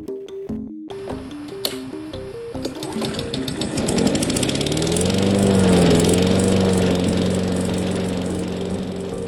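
A small engine sputters to life after a few brief tonal blips, then settles into a loud, steady droning rumble like a lawn mower running, with no one talking.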